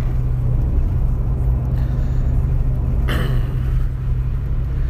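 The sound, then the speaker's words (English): Steady, heavy road rumble from inside a car moving on a highway in rain and traffic, with a constant hiss of tires on wet pavement and a brief whoosh of another vehicle passing midway through. “I'm on the highway. It's raining. There's traffic.”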